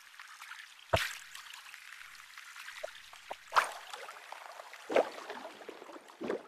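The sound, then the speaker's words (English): A synthesizer swooshing noise with a slow attack, less decay and sustain, and a long release, like washing water, hisses steadily with four louder surges that swell and fade at irregular intervals. No one speaks. “It's almost like somebody's brushing the waves with their feet. It's like a swoosh.”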